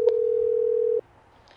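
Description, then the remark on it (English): A steady telephone dial tone hums for about a second as a call is placed from the home office of True City Tours in Greenwich Village, then cuts off abruptly, leaving a quiet line with faint hiss and a soft click at the end. “now in the home office of her company, True City Tours in Greenwich Village, as she phones up Jimmy Foss's mom to invite her to the tour that will contain the big surprise for all of them.”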